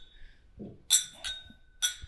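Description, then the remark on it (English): Glasses of rye whiskey clink together three times in a quick toast among men, bright ringing taps with short lingering tones between them. “Cheers, gentlemen. Cheers now. Oh, I forgot to cheers.”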